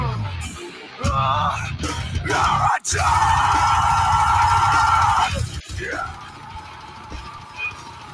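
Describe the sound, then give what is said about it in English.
A heavy metal song hits its drop after a brief gap, a male vocalist yelling "heretic" in a long sustained vocal over dense, loud, distorted instruments for a few seconds before the music shifts and thins out. “When he yells heretic and they just start fucking going. Oh, what a headbang moment.”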